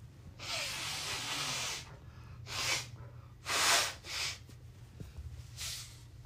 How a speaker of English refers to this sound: Hold on, I need to blow my nose one more time.